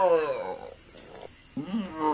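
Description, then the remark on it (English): A lion, its tail tied to a tree, roars angrily in two loud bursts, a rough growling snarl, then a brief quieter pause before a second surge of roaring. “He roared with anger when he discovered that Monkey had tied his tail to a tree.”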